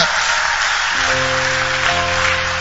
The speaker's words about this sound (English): Clap for Jesus.